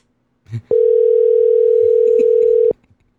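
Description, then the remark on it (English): A phone call's ringing tone sounds as one steady, unbroken electronic tone at a single mid pitch, lasting about two seconds, loud and alone after a brief soft thump. “Are you calling him? Yeah, I might as well.”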